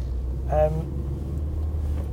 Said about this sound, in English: So we're at the car park, we're in the car park